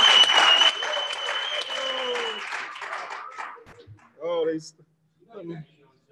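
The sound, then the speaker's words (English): A crowd claps and applauds loudly for the planting, with cheering and a sustained whistle-like tone, then the clapping fades and a couple of short voiced shouts follow. “Clap it up for the planting, y'all.”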